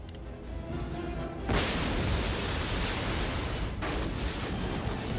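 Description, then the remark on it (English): A movie special-effect explosion on a film set with simulated plastic metal, panels and roofs bursts in after a brief tonal, music-like opening, followed by a sustained roaring rumble and a second blast a couple of seconds later, loud. “This was tricky doing these explosions in here because there was so much sort of simulated metal, i.e.”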